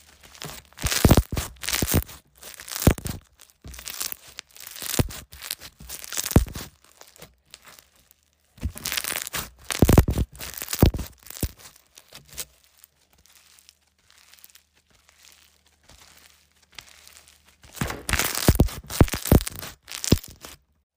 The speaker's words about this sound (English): I need you guys to rate the, like, sounds of these slimes, I guess. Leave a comment which one you like best. So this one is called Crunch Bomb. I'll stop talking.